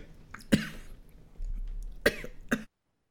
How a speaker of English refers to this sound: Wait, sorry about that. Coughing fit.